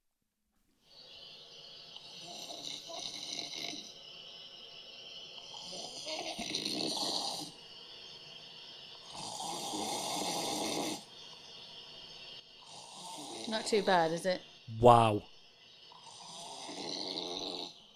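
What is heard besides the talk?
man snoring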